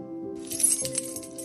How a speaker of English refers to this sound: Vinny heard something. It sounded like keys.